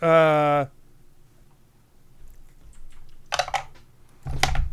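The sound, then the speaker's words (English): A short voiced tone at the start, then a quiet pause before two quick bursts of dice clattering and rattling down a dice tower, the second one louder. “Stupid dice tower.”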